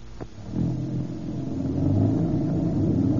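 A car engine turns over and catches after a short click, then settles into a steady low rumble that swells gradually as the vehicle revs and pulls away, fairly loud.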